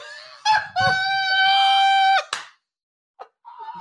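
A loud duck quack, one long drawn-out nasal call, followed by a couple of short, fainter quacks after a brief pause. No one speaks.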